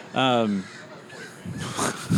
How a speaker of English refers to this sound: We're about to be attacked by crows.